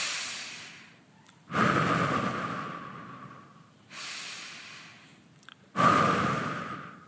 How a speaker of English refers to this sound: Picture about 13 middle-aged women stretched out in very odd positions on colorful mats under a shady tree in a park. They're breathing together in sync.